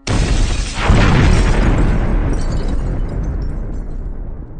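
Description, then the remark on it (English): A sudden loud explosive burst with a sharp crack as two burning jars giving off sulphurous fumes suddenly shatter, followed by a long roaring rumble that slowly fades. “At their words, the two jars began to burn, slowly giving off sulphurous fumes until they suddenly both shattered.”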